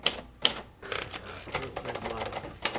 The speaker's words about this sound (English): It just takes a little getting used to typing on a manual machine again.